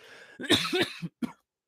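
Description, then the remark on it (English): A rough cough burst from a scratchy throat, followed by a couple of shorter hacking coughs, with a brief pause before the last one; no speech. “Sorry, I just have a bit of a scratchy throat. Cough.”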